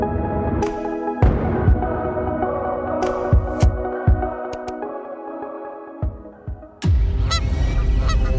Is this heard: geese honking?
yes